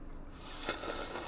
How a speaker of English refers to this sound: Which means you can finally drink alcohol. Yep. Here we go. Big sip.